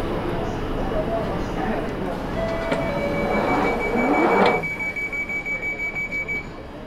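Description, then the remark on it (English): A London Underground tube train rumbles loudly with whining, squealing tones from its wheels and motors, a rising whine near the end, then a rhythmic clatter as it slows to stop at a platform in London. “The tube stops once again, and the busy Londoners make their way in and out of the carriage.”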